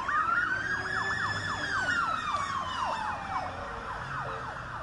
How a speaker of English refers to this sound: While this ambulance comes by. Cop car.